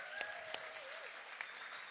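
An audience applauds steadily, a dense wash of clapping with a few sharper claps standing out, plus a faint whistle-like tone gliding through the middle.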